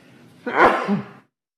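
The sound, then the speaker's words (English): A single sharp sneeze bursts out, a quick breathy onset followed by a forceful explosive release that fades within a second. “Excuse me, I need to sneeze.”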